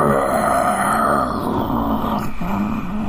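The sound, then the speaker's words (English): A human voice imitates a deep, bellowing roar, holding a low, rough, throaty drone steadily for about three seconds with a slight dip and swell near the end. “It's more like a deep roaring, like a.”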